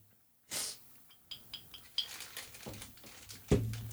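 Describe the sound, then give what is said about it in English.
A paper fruit snack wrapper being crunched: an opening rustling burst, then a run of irregular, crisp crackles ending on a louder crinkle, with no voices. “I like your paper crunching over there”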